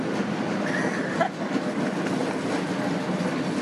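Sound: tram passing on rails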